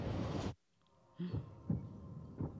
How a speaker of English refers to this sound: The heartbeat. It's going away now.